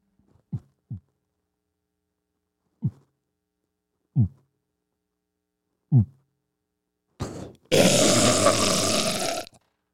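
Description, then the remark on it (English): Slow, muffled human heartbeat of about 48 beats a minute picked up by a microphone: a handful of deep, soft thumps spaced well apart, followed by a loud burst of rough, hissing noise near the end. “I do have, my heartbeat is 48. 48 beats a minute.”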